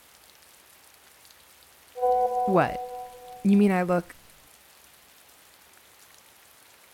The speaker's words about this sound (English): No wind over here, just rain.